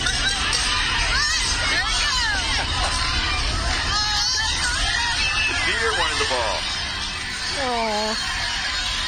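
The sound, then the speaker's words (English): A loud, dense stadium crowd roars and cheers wildly, with rising shouts and excited screams swelling over the constant wall of noise, no clear individual voices, as a deer runs across the football field to the end zone ahead of a player scoring a touchdown. “I mean, listen to the people go crazy.”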